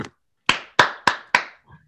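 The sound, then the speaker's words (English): A polite golf clap for the Lions team after they finally won a game: four soft, evenly spaced hand claps after a brief opening clap, each with a short bright smack and quick decay, with no voices. “Let's give a golf clap for the Lions.”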